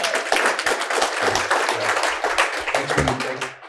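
A crowd applauds steadily, a dense wash of many hands clapping at once that holds fairly loud throughout before tapering slightly at the end.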